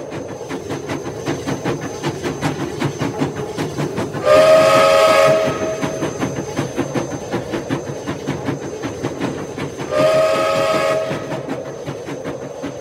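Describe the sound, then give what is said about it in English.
A steam locomotive chugs steadily with a rapid rhythmic beat, and its shrill whistle sounds twice in long, loud blasts over the rumbling engine. “Without warning, the headlight seems to rise into the air as if the ghost locomotive was levitating.”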